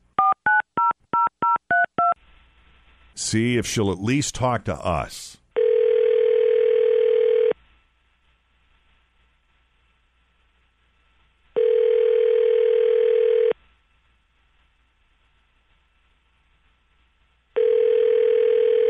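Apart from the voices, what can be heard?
telephone dialing and ringing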